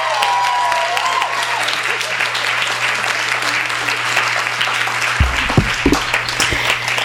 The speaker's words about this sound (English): Let's please give a warm round of applause to one of my very favorite authors, Cecil Castellucci.